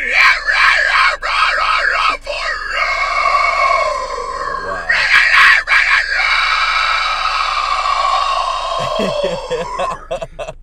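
A loud, high-pitched vocal scream from a recording being played, strained and rasping, held in long sustained bursts with a wavering, warbling pitch and a few short breaks, running nearly unbroken for about ten seconds.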